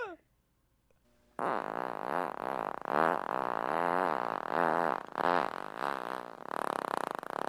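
A long, loud, sustained fart of about 11 seconds, the first of three recordings, with a buzzing, wavering tone that rises and falls, continuing for several seconds after a short quiet start.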